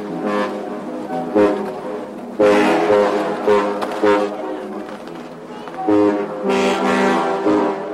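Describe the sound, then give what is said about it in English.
Horns from about seven ships caught by ice in Montreal, with two trains and the bells of Montreal's Notre Dame Cathedral in the mix, sound together as a composed piece: long, loud, overlapping blasts with rich low tones that swell in several waves, with sharp new entries breaking over the sustained chords. “So all of this is orchestrated, and the boats are playing it.”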